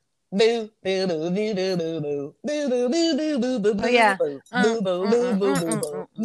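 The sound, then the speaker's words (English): A single voice sings the opening of a 90s pop song without words, in sustained, wavering melodic phrases with short breaks between them. It is an imitation rather than a recording. “I'm going to do the beginning because that's probably what'll make you know it.”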